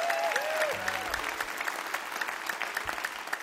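An audience at Mountain Stage applauds steadily for the staff, a dense wash of many hands clapping at an even level throughout, with a faint tonal whistle or instrument note sliding briefly near the start.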